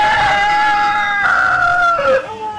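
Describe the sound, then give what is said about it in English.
A sick rooster, ill since 2009, gives one long, strained crow, loud, holding a hoarse, wavering tone before it cracks and drops in pitch at the end. No other sounds accompany it. “That's our sick rooster.”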